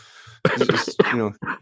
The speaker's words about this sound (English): There we go. I get there sympathy coughing.